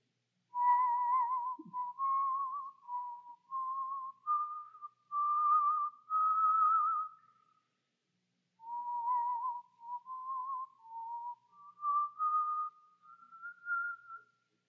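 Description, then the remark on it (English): Someone whistles a slow, steady tune alone, depicting Hudson Taylor whistling: two flowing phrases of sustained notes separated by a short pause, clear with no talking. “Taylor, how can you whistle when our friends and our co-laborers are out there facing death?”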